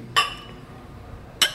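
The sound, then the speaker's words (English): Two bright glass clinks ring out about a second apart, clear, each with a short shimmering decay over a quiet background, as glasses are touched together in a toast during a Reposado tequila tasting at a Mexican restaurant in New York. “Cheers. Cheers.”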